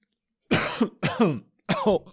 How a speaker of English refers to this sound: Oh, I just coughed. I'm going to get thrown out of evening meeting.